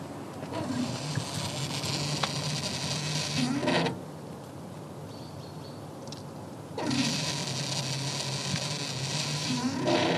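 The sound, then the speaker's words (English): A hydrogen fuel pump, started with buttons on the machine and its nozzle snapped into the van, fills the van's tank. The tank holds about 2 kilos and is full at 350 bars. A steady, loud hiss and mechanical whir drops to a quieter hum for a few seconds, then surges back to full strength. “pushes some buttons on the machine and it starts running”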